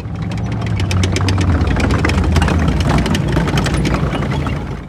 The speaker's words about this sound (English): On December the 16th, Hitler's army of tanks drove forwards.